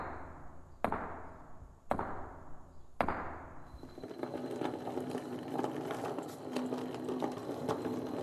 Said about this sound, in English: But it's just a rocky hill. You watch. We knock on this rock and...